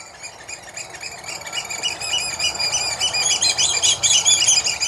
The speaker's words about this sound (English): Bird 6 is one of our commonest birds, the oystercatcher. Found all around the Isle of Man, they nest on any convenient beach around the island. Black and white birds, bright red carrot beaks and bright red legs.